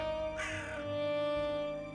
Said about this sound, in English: You know what they call a group of crows?